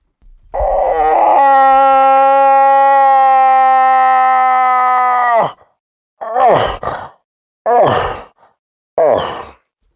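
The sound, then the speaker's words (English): A person imitates a moose cow call, the so-called sexy cow call: one long, wavering nasal moan that holds for about five seconds and breaks off, followed by three shorter, rougher grunting calls spaced evenly apart. “Can you do a moose call for us?”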